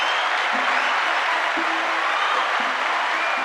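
A steady round of applause from a crowd, dense clapping filling the whole stretch at a fairly loud, even level with no talking over it.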